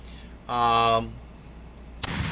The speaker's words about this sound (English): One massive cannon for you.